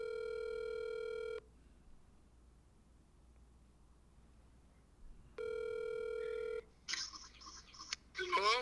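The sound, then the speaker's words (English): A phone ringback tone over a speakerphone, two steady electronic rings separated by a long pause, followed by a burst of clicky connection noise and a faint voice. “Why you got him on phone.”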